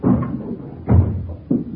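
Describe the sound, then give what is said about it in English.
An upstairs door, reached by a flight of stairs, being handled and swung open: three dull, low wooden thumps and clunks spaced unevenly over under two seconds, moderately loud, with no voices. “Doors open.”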